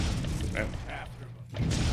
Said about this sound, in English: There it is. Explosion. That's an explosion.